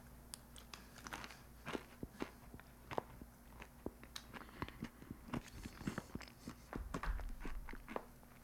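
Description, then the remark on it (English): Crisp crunching from chewing a breakfast of blueberries, yogurt and granola, with irregular sharp bites repeating steadily over several seconds and no talking. “That crunch is astounding.”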